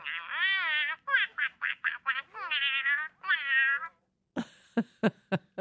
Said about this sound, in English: Turn this puppy on. I guess it's a duck. Okay, see. Ooh.